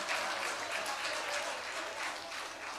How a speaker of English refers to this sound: Go ahead and clap for them too.